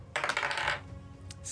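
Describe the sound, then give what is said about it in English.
A ten-sided die is rolled across a hard tabletop to pick from a bond table. It makes a quick burst of small rattling knocks, then settles with a faint tick or two, landing on seven. Fairly loud, with no voices. “So this is a D10. You just gonna roll that.”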